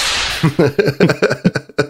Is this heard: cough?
no